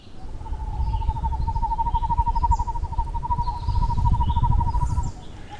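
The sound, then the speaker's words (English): A Northern Hawk Owl's song: a long, rapid, evenly pulsed trill held steadily for about five seconds, clear over a low rumble of wind or background noise. “And so we are looking forward to doing some new research on the Northern Hawk Owl. And it has a very interesting call as well.”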